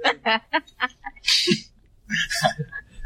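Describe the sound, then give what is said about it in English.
A few short voiced sounds are followed by two harsh, breathy coughing bursts about a second apart, the second one ragged and drawn out, the coughing caused by oregano. “This oregano's making me cough.”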